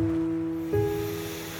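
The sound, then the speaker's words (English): A steady, soft wash of ocean surf rolls beneath a sustained, humming musical drone, calm and continuous with no distinct breaks and no voices. “So she can kiss the shore with her waves every time you breathe in.”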